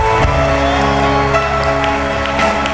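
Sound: audience clapping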